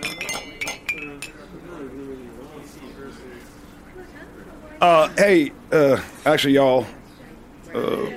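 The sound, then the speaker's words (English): Several bright glass clinks ring out near the start, as if glasses are tapped together in a toast, followed by murmured talk and then a few louder bursts of voices. “Lord knows we've had our ups and downs, but I'm so glad you finally came around because I'm looking forward to doing this for a really long time. Cheers.”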